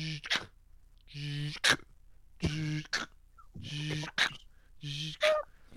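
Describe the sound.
A voice imitates Elon Musk's heavy breathing during an interview: a steady series of about five loud, raspy, voiced inhale-exhale bursts, with brief gaps between them and no words.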